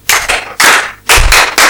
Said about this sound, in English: Oh, yeah, clap for yourself now. Not like that.